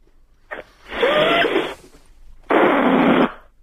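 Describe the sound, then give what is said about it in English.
Two raspy, squealing bursts of a balloon being played with, each under a second long, preceded by a short tap. The sounds are fairly loud and heard alone, with a wavering squeaky tone in the first. “No, just messy around them with a balloon.”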